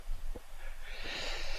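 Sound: yawn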